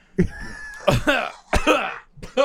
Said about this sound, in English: I love it when people cough in the microphone. That's great. That was sarcasm, though, but it was like verbalist sarcasm.